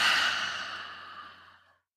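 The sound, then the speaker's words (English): A long, breathy exhale through the mouth following three quick sniffs through the nose, part of a breathing exercise; loud at first and slowly fading over nearly two seconds, with no voice or other sounds around it. “Inhaling three quick sniffs and exhale with your mouth.”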